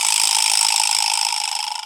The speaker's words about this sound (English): A vibraslap is better than a clock because you could use it when you're making an important announcement. Allow me to demonstrate.